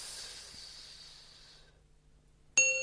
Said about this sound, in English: So that bell is for illegitimacy. So that will be this.